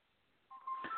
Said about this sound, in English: My phone's getting lit up.